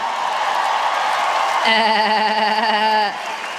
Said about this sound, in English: I guess that's what that is. That has to be a goat. That has to be the goat.